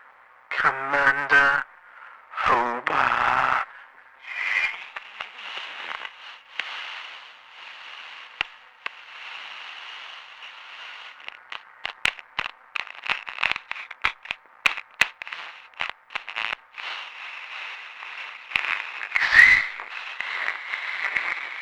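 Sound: voice imitating radio static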